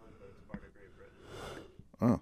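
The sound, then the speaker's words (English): A person yawns: a long, breathy inhalation swells and fades, then ends in a short, loud voiced groan. “Well, you're yawning, I'm yawning.”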